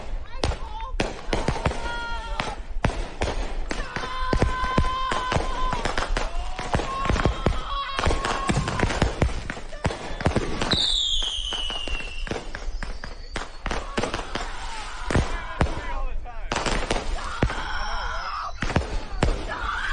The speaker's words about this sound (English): So I'm only very tentatively putting this in the Karen category, but she mad at people for shooting fireworks.